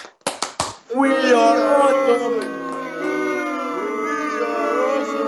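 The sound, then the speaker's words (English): A few sharp claps in quick succession, then a large wrestling crowd at Full Sail in Florida erupts into loud, sustained chanting and cheering, many voices yelling together in a rising and falling unison. “And as well it should, because the Full Sail crowd are some of the most brain-dead, backwards wrestling fans you will ever see.”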